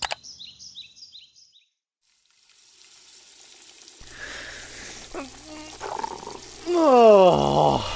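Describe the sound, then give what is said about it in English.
Bacon sizzling in a frying pan: a steady crackling hiss fades in after a few high chirps and a short silence, then grows louder, with a brief tonal sweep near the end. “Hey, I've got some bacon going.”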